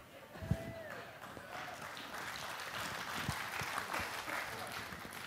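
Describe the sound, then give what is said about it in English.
An audience applauds steadily for several seconds, a dense wash of clapping hands that swells slightly toward the end, with a few scattered voices mixed into the crowd noise. “Now you clap because you're happy for the cows.”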